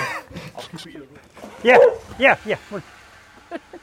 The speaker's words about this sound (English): You didn't bark when he arrived, you're just barking when he leaves. Yeah. She's funny though.